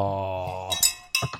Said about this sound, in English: Nice. Yeah. You got a good bell on that one.